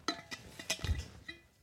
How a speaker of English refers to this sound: The undisputed sound of a Chili's bottle.